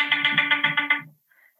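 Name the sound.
mobile phone ringing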